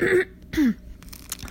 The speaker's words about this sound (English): Sorry, I had to clear my throat. It's so nasty, but sorry, kind of had to do that.